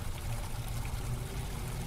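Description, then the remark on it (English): A steady rush of water pours continuously out of a flooded room through its open door, a dense, even wash with a low rumble underneath; the water in the room is about 10 to 12 inches deep. No voices are heard. “Well, no, the door's open and it's flowing out.”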